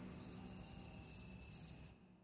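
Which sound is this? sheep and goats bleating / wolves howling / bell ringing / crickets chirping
crickets chirping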